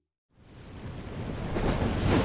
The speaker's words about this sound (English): we're in Playa del Rey, California. I love walking in the rain. We get so few days of rain in California that I wanted to come and see like the storm surge and the waves and just be out here, yeah.